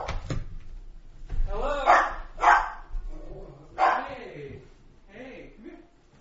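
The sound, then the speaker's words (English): A dog barks and yips in several sharp bursts at a knock on the door, with short pauses between them, mixed with muffled human voices in the background. “I think he's talking to his dog. You did a good job.”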